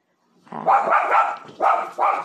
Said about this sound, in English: I will judge my dogs though for being too loud. Y'all need to get, y'all are in timeout.